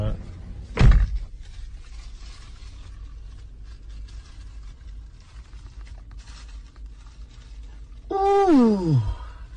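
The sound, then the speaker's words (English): A door slams shut with a single heavy thud near the start, followed by quiet murmur and, at the end, a drawn-out falling vocal groan. “Man, shut the door, man.”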